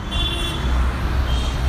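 Busy road traffic in Delhi, India rumbles steadily with engine noise, while a car horn sounds at the start and again near the end over the continuous din.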